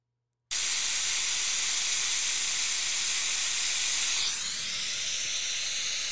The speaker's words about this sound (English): Okay, now here's white noise. You'll instantly you'll hear the difference.